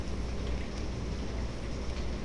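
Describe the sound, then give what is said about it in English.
Heavy rain pours down in a steady, dense roar, a continuous wash of hiss with a deep low rumble underneath and no voices. “Now it's pouring down rain.”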